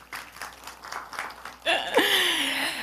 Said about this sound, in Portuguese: Ele destacou um fato dentro desse estudo do Instituto, que a região norte é onde há maior percentual de pessoas atuando em trabalhos voluntários no Brasil. Palmas para vocês.